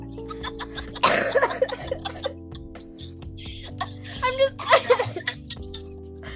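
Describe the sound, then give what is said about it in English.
Harsh, breathy bursts of coughing tangled with laughter come in two close, loud clusters over a steady musical backing, with a person briefly speaking between them. “I don't know if I'm crying or laughing or coughing anymore.”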